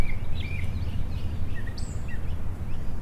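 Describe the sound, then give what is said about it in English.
Birds chirp outdoors with scattered short, high calls and whistles coming and going over a steady low rumble of background noise, with no one talking. “Do you like listening to the birds every day?”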